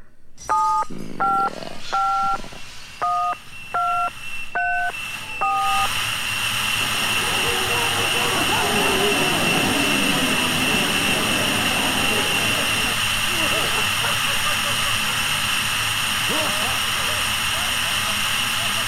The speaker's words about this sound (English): Static.